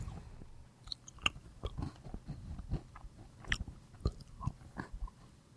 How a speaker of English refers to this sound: Okay, that's a lot of little chews. I need you to mic that. Yeah, we need more volume, buddy.